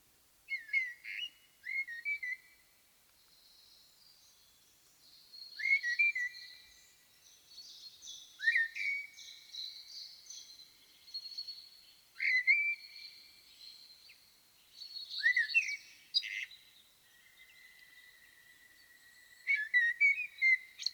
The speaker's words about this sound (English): And now I want us to shift to a blackbird.